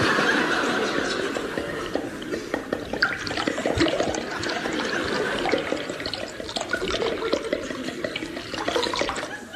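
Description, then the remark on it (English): A drink is poured into a glass, a steady splashing, gurgling stream of liquid running for several seconds without pause. “Have another? Just a small one, please.”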